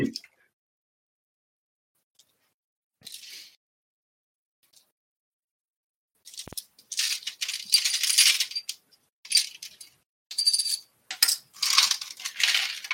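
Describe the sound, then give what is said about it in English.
Dice are picked up and rolled several times for a medicine check in a game, giving bright, clattering rattles in quick bursts after a brief click early on, with no one speaking. “I probably need dice for this, don't I?”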